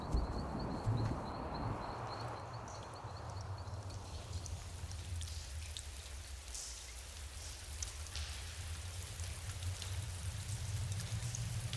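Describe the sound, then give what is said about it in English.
Steady rain from an approaching storm patters down at sunset with a constant hiss and scattered drops striking surfaces, plus a low rumbling wash underneath; no one speaks. “That storm is getting closer and the sun is setting.”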